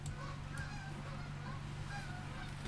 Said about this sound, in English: Oh, I've got like some kind of birds outside. Oh, I thought they were dogs. It sounded like a bunch of dogs, but I think it's a bunch of honking birds. Oh, like geese. Yeah, something. or seagulls. I think they were seagulls.